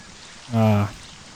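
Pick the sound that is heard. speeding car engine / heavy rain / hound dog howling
heavy rain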